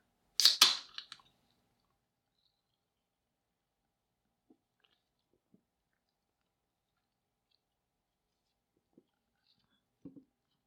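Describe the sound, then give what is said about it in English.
A short, loud slurping sip of orange vanilla Coke with a hissy, fizzy edge, followed by near silence broken only by a few faint swallowing clicks. “So I'm going to get a sip off of my orange vanilla Coke here, so just bear with me for just a moment.”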